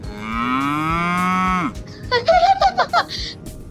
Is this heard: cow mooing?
yes